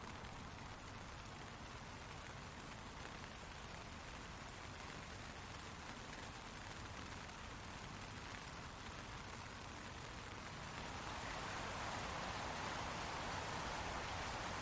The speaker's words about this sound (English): Sometimes a sound can suggest what it is not. Would you be surprised to realize that what you are listening to is the sound of rain falling on an umbrella?